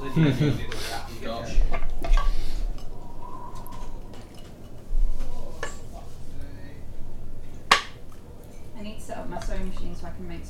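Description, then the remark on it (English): A whole bunch of dice, with a bag of dice, are poured out and rattle, with scattered sharp plastic clicks and clatters and one louder crack partway through, over a steady low background murmur of voices. “That's a whole bunch of dice. There we go, and a bag of dice on this side, so you have.”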